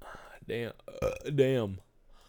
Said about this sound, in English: Sometimes the podcast is just me fucking burping into the microphone.